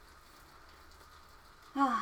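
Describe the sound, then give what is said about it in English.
Soft, steady rain hisses faintly outside a window, recorded with a microphone placed right next to the window, a continuous even wash of patter, until a voice starts speaking near the end. “We interrupt our regularly scheduled programming for some nice rain sounds.”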